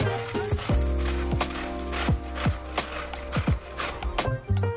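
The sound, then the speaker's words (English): Beets are shredded on a grater by a cook wearing gloves in quick, repeated rasping strokes, fairly loud, over a steady low hum in the background. No one speaks. “My meat is boiling, and meanwhile, we're gonna shred some beets, and it will be a messy process, that's why I put some gloves on.”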